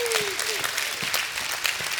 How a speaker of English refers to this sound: If you believe that, give God a hand clap and a shout of praise this morning.